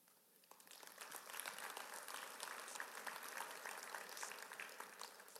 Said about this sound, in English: I wasn't shooting for a Steve Jobs applause moment there, but that's awesome that you guys are excited about it too